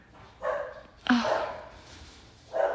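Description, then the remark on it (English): Dogs bark in three sharp bursts spread over a few seconds, moderately loud, with the middle bark the strongest and a faint background hum between them, at a home. “Why are you guys barking? What are you barking about?”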